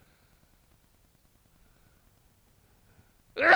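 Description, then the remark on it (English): A sudden, loud, sharp sneeze bursts out at the very end after several seconds of near-silence with only a faint low background hum. “Bless you. No sneeze button, I guess.”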